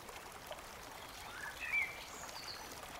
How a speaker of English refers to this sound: You hear water slowly flowing down a small creek nearby.